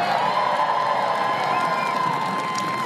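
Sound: audience applause and cheering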